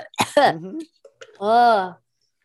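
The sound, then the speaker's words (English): A sharp cough bursts out, followed after a brief pause by a drawn-out, strained vocal rasp like someone clearing a choked throat, from a person who has choked on tea. “I have tea in my lung, but it's fine.”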